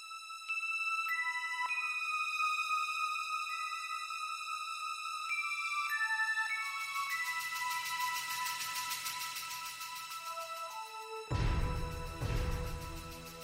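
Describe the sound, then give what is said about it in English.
Orchestral game-intro music swells from a few sustained, chiming high notes into dense layered chords, growing fuller and louder before a forceful low hit near the end. No voices. “Listen to how the orchestra builds up, section by section, chord by chord.”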